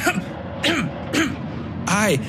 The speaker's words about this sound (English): He leaned to the side and made a series of dry, abrupt coughs into the crook of his elbow.